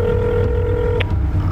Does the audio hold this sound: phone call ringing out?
yes